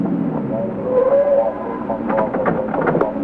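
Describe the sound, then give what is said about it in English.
A car slows and pulls over, easing to a stop, its engine a steady rumble that settles down, with faint murmuring voices underneath. “Pull over, huh? I want to talk to him.”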